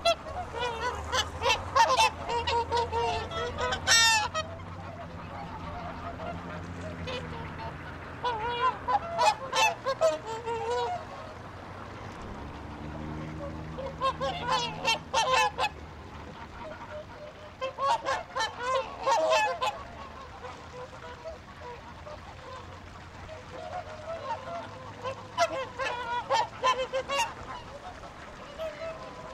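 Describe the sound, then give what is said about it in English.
A noisy flock of geese, ducks and other fowl honking and calling on a typical morning at a pond in central Reykjavik, Iceland, where people come to feed them, bursts of overlapping honks rising and falling repeatedly, with a low steady rumble of background noise underneath. “In the center of Iceland's capital, Reykjavik, there's a pond where each day young and old alike come to feed the geese, ducks, and assorted fowl that inhabit the waterway.”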